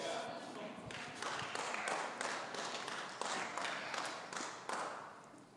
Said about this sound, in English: The only non-charismatics in the room right there just clapping.